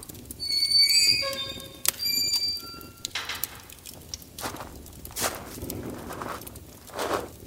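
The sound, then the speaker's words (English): Hooves of a horse needing shoeing clip-clop at a blacksmith's forge in an uneven series of sharp knocks, following a brief burst of high, squealing tones at the start; no one speaks. “A sip of water for me and my horse, who also needs shoeing.”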